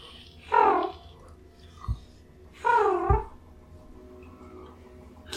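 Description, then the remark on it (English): Two drawn-out cat meows, clear, separated by a short pause, with a soft thump after each against a quiet, low hum. “Kitties!”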